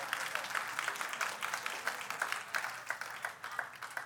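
A church audience applauds steadily for several seconds, giving God a hand clap of praise during a sermon, many hands clapping in a dense, bright wash with a few sharper individual claps standing out, holding fairly even before easing slightly at the end.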